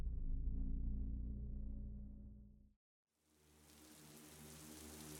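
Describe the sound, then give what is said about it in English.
A low droning hum fades into a moment of silence, then a soft, steady patter of rain rises and continues, faint and hissing throughout. “I wake to wordless singing and the patter of rain.”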